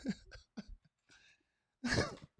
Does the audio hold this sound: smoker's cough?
yes